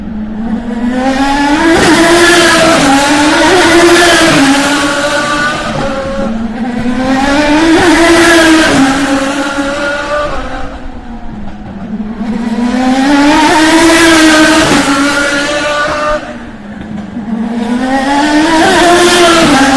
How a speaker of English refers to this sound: We're watching the cars get around the gate here at the Baltimore Grand Prix, picking up speeds close to 200 miles an hour.